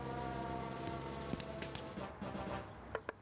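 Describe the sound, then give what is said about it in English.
An all-clear siren drones steadily, holding one sustained pitch for the whole stretch with no rise or fall, and a few sharp clicks break in near the end. “Oh, it's the all clear siren.”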